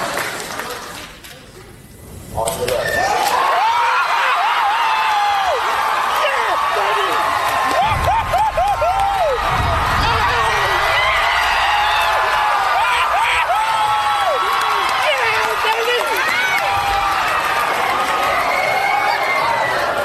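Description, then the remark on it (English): A movie theater crowd on the opening night of Avengers: Endgame erupts into wild, sustained cheering during the scene where the Avengers assemble, with whoops, screams and shouts layered over a dense roar of voices that stays loud and unbroken after a brief quieter opening. “So that's just one example of the crowd going insane during that movie.”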